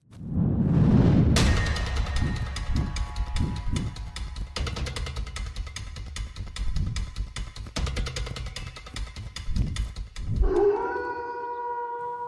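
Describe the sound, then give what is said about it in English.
A person mimics a wolf with a long, drawn-out howl that rises and falls in pitch, loud, with busy rhythmic sounds playing behind it. “My howl is going to be really bad.”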